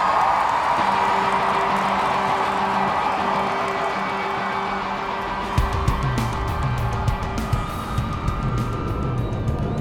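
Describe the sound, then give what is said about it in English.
A large concert crowd in San Pasquale roars and cheers for an opening act in a dense, continuous wash of noise, with a low steady hum underneath; about halfway through, scattered sharp claps break out above the din. “When this hydraulic platform ascends to the stage, they'll be screaming for us, just like that.”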